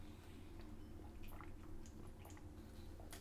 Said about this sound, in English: I have to take a drink here. Now it's not a cold, it's allergies. Hold on. It's coconut water, if you must know.